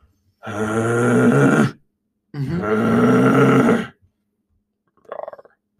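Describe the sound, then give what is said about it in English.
A person imitates a bear's roar with two long, loud, guttural growls in close succession, followed by a brief quieter grunt; no speech. “When you hear that roar, you're too close.”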